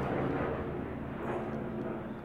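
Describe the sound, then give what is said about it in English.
A helicopter passes overhead outdoors, a loud, steady rumbling roar filling the low and mid range without a break for the whole stretch, with no voices over it. “We've got a helicopter going by.”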